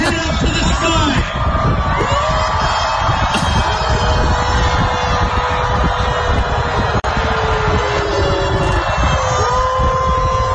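A huge crowd of 2,033 people howls together like wolves, with overlapping rising and falling wails riding over a constant loud roar of voices for about ten seconds, sounding much like a cheering concert audience.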